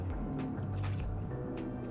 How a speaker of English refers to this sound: Hold on 1 second, you guys. Okay. I need to take me a little water break.